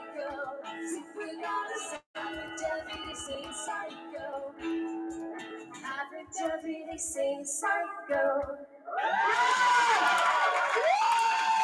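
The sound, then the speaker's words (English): A song plays for several seconds, then a crowd erupts into loud, sustained high-pitched screaming that fills the final few seconds and drowns out the music. “Woo, that's screaming.”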